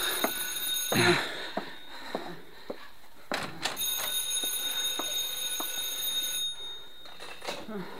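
A telephone bell rings continuously, a bright metallic trill running almost the whole time, with a few knocks and bumps cutting in.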